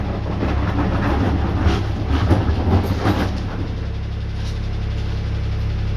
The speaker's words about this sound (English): 1 second, I can't hear. I can't hear. The garbage truck is in my ear.